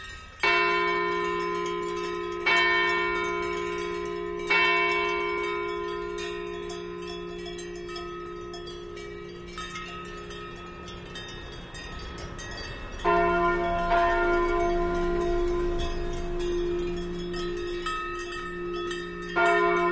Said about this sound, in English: In a Swiss alpine village, Stephen Feld recorded a herd of belled cows heading back to the barn as the Angelus chimes from a nearby church.